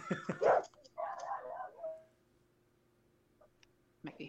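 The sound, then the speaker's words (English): A pet dog barks a few times in quick succession in the background of a call, then lets out a drawn-out whining yelp before falling quiet, with one more short bark near the end. The sounds are moderately loud. “I'm just going to mute you so I can yell at my dog.”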